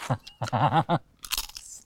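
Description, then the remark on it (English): A few short voiced sounds come first, then a loud, crisp crunch breaks out in a large cinema, echoing and crackling briefly with a bright, rustling tail as it fades. “But the echo in here from that crunch just now was quite something.”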